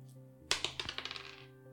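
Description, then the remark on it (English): A d10 die is dropped and clatters across a hard surface: a sharp first hit, then a quick series of light, bright taps that speed up and fade over about a second, over a low steady hum. “Roll me a d10.”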